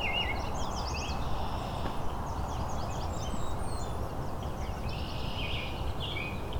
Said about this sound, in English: American robin.